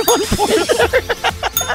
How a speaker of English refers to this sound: You're just hitting the bell.